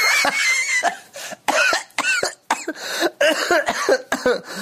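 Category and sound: human body sound, coughing fit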